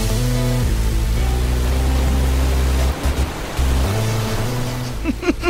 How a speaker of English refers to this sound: there are speedboats on gorgeous Caribbean waters